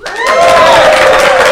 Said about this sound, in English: That doesn't deserve applause.